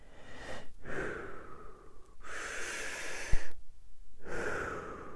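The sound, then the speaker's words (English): Slow, deep breaths drawn in and let out during a pause to catch one's breath, each airy exhale rising and falling in a steady rhythm with brief quiet gaps between, and no talking. “It's an opportunity for us to pause and to catch our breath.”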